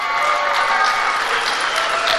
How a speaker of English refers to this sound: Again, that's the Republican Jewish Coalition applauding turning away immigrants fleeing persecution.